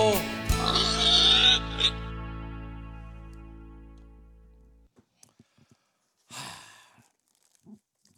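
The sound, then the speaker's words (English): A person loudly imitates a pig's oinking squeal, a harsh nasal burst trailing into a fading hum, followed by one shorter grunt after a brief pause. “I challenge anyone to do it better than that.”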